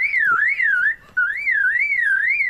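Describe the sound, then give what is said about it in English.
A lyrebird mimics a car alarm: a loud, clear electronic-sounding warble rising and falling in steady waves, in two phrases with a brief pause between them. No one speaks. “And that's a car alarm.”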